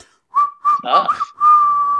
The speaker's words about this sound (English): I can't get that last one. I run out of whistle power at the end there.